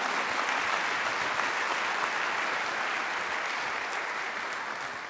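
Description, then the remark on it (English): An audience at Calvary Church claps together in a dense, steady wash of applause that holds strong throughout, easing off slightly toward the end, with no voices standing out. “And I want you all to clap because we're awesome.”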